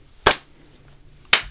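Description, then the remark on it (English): Two sharp, bright hand claps spaced about a second apart, a deliberate slow clap with quiet pauses between strikes and no talking. “Slow clap, everybody.”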